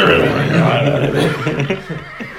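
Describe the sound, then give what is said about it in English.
A person imitates a horse named Scrawny Nag neighing: a loud, wavering neigh that shakes up and down in pitch for about two seconds before trailing off. “So just as they're drifting off to sleep, they hear Scrawny Nag neighing from down below.”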